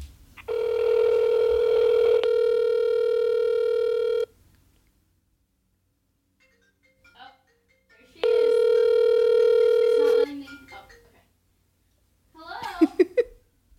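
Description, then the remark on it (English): An outgoing phone call to a friend, with the phone volume turned up, rings: two long, steady ringback tones separated by a few seconds of silence, loud and clear, followed by a brief voice answering at the end. “Phone call, volume up.”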